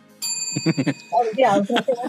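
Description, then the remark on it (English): A bell rings once with a bright, lingering metallic tone that slowly fades while people talk over it. “I've got your bell as well”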